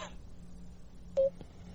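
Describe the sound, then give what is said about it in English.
A single short telephone tone beeps over a low, steady line hum, bracketed by a couple of faint clicks, as a first phone call comes in, with no one speaking. “There's our first phone call. We're going to call.”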